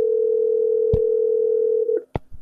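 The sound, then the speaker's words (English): A steady, loud telephone dial tone hums for about two seconds while a phone call is being placed, broken once by a sharp click, then cuts off and is followed by a few short clicks. “And yes, I am making a phone call.”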